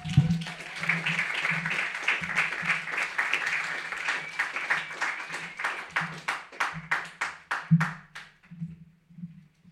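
An audience at a poetry reading applauds a poet coming up, starting as a dense, steady wash of clapping that gradually thins into a few scattered, distinct claps before fading out.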